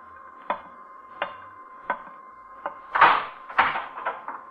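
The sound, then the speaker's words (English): A door being opened: several sharp, evenly spaced clicks, then a louder cluster of rattling, knocking bursts as it swings, all over a steady background hum. No one speaks. “Earthman, you will rise from your seat and open that door.”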